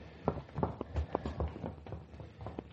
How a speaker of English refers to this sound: She left. I watched her clatter down the stairway.